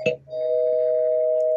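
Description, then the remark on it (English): A spoiler bell rings once as a spoiler warning: a sharp strike followed by a steady, bright tone that holds evenly for over a second before cutting off abruptly. Nobody speaks during it. “I'll ring the spoiler bell and talk about this”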